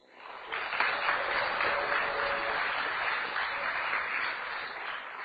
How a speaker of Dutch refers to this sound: Graag een applaus voor Joost Rietveld.